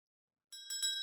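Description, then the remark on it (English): A bright, ringing bell with sustained metallic tones, struck a few times in quick succession after a half-second of silence, clear with no talking, rung before a cheers. “Oh, you're not going to do the bell? I'm going to do it.”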